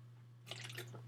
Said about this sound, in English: So excuse me, a drink of water.